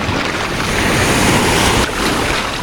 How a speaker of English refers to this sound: This flight suit is full of water. Every wave rolls me over.